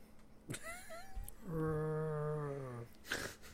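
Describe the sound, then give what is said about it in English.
A person vocally imitates the guttural, dinosaur-like scream of a tribe without spoken language from a film: a brief rising whine, then one sustained, strained growl of about a second that sags slightly in pitch before cutting off. “It's like a dinosaur roar. They end up like having bones in their esophagus, which is almost like an opening that allows them to make these guttural screams.”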